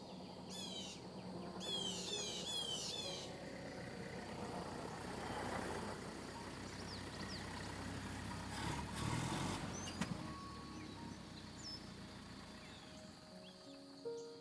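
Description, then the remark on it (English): A truck, arriving at a ranger station at 2 o'clock on a Sunday with a grocery delivery and a bed full of firewood, idles with a steady, low rumble that runs the whole length, while birds chirp briefly at the start and faint rattles surface now and then. “Thompson finally showed up with my grocery delivery and a truck bed full of firewood”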